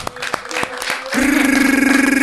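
Audience clapping for a young woman brought to the stage, a burst of scattered, sharp claps lasting about a second, which then gives way to a loud, steady, low buzzing tone that holds to the end.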